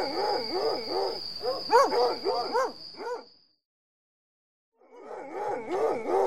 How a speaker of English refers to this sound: Hey, get those dogs off me. Have your men take them outside, General.